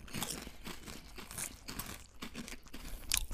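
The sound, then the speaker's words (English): Someone crunches on Tapatio chips, a steady run of crisp, crackly bites and chewing with an irregular rhythm and a sharper burst near the end. No one speaks. “The chips are kind of sweet.”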